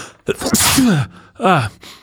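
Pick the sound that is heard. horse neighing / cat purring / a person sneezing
a person sneezing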